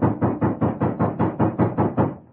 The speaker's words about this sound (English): And then, there was a loud knock on the door.